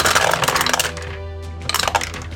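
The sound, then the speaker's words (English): Dice clatter and tumble across a hard table in a quick burst of rattling clicks during a tabletop roleplaying game, go briefly quiet, then give a few more scattered taps, landing on two ones. There is no talking. “Luckily, I rolled two ones.”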